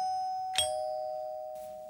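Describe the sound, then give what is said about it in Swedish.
A doorbell chimes once with a sustained ringing tone as a guest arrives, then a second strike sounds, both tones lingering and slowly fading. No one speaks. “När jag sa ringklockan ringde det. Nu ringer ringklockan på riktigt, så nu kommer gästen.”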